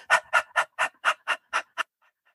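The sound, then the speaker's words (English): A person pants like a dog while tapping, as part of a tapping and breathing exercise: about eight quick, breathy huffs in a steady, fast rhythm, fairly loud, then stopping into silence. “And then you're going to pant like a dog three times while tapping.”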